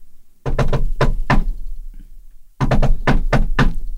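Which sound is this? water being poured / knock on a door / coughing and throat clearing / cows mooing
knock on a door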